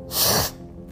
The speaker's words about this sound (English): There's that sniffling again.